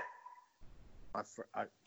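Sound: dog barking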